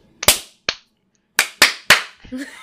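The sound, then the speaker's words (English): Five loud, sharp hand claps ring out in an uneven rhythm, with pauses between them, followed by a brief faint rustling sound at the end. “Loud clap. Sure. Band clap.”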